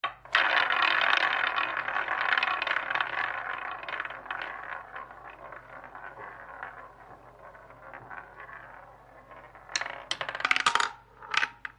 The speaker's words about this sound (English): when the roulette ball lands